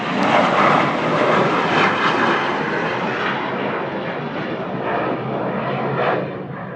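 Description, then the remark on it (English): A Bombardier private charter business jet taking off, a loud, steady jet-engine roar that holds strong throughout, its hissing upper edge easing slightly toward the end, with no voices. “There's a Bombardier taking off there.”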